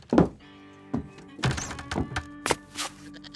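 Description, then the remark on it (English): Wooden saloon doors of a bar in a former shoe store swinging: a run of hollow thunks and knocks, several in quick irregular succession, with a faint sustained creak underneath; fairly loud, no voices. “Inside the swinging doors, it smelled immediately welcoming to a goat.”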